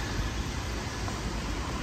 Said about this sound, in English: And how could I wait until this traffic passes by?